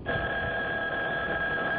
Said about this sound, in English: When the phone rang the day after my luncheon with Uncle Edgar, I thought, well, they certainly were fast about fixing his car.